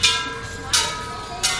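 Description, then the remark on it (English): Three evenly spaced taps on wishing bells at a Buddhist temple just outside Hong Kong, each a bright metallic strike whose shimmering overtones ring on and overlap with the next, moderately loud with no one talking. “Just outside of Hong Kong, visitors walk the sacred grounds, tap wishing bells and gongs, and spin prayer wheels.”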